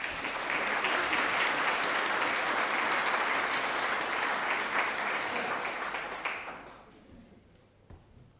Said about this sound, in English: Isn't that nice? A wee round of applause for that poem.